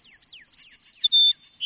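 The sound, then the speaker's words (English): A flock of Cassin's sparrows perched atop a mesquite bush in a South Texas grassland at sunrise sings: a rapid, high stuttering trill gives way to several long, pure whistled notes stepping between pitches, clear and loud with no talking. “The sun rising over a South Texas grassland finds a flock of sparrows, like these Cassin sparrows we're hearing, perching atop a mesquite bush.”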